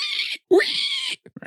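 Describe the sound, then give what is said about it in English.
A voice imitates a pig squeal in two loud, shrill, sustained bursts, followed by a few short breathy sounds. “You just hear these huge, heavy stomps. And that pig squeal.”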